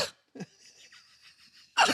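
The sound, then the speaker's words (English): Sharp coughs burst out at the start and again at the end, with a softer throaty sound and a quiet stretch between them. “the cough.”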